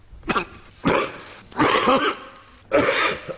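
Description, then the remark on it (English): Josh Frydenberg coughs repeatedly in a harsh, phlegmy fit during a big economic speech on a mini budget, four loud bursts with short gaps, mixed with throat clearing, alone without speech. “Yeah, Paul Keating had the recession we had to have, and Josh Frydenberg had a coughing fit.”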